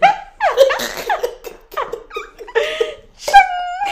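A loud string of harsh coughing bursts, a lingering cough left over from COVID, mixed with breathy, laugh-like vocal noises, coming in uneven fits over a few seconds.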